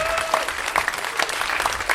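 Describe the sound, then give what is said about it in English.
An audience applauds, a dense, steady patter of many hands clapping that holds at an even, moderately loud level throughout, with no break or fade. “Round of applause.”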